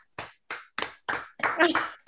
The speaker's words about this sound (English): Can I clap as well? Yeah, do it. Why not? Why not? Take a bow.